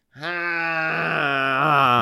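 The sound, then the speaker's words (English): A voice imitates a plane flying overhead above Salt Lake City with a steady, low droning hum that holds one pitch for about two seconds, turning rougher and buzzier partway through and swelling slightly toward the end. “That's him on a plane.”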